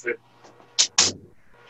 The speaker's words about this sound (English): All right, I gotta shut this door. I always get distracted.